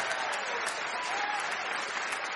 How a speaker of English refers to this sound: I don't know if you can hear, everybody's applauding in the studio.